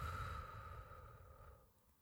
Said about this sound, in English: Let's take a slow, deep breath in. Let's hold it for a moment and slowly release it with a long exhale.